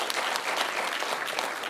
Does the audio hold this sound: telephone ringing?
no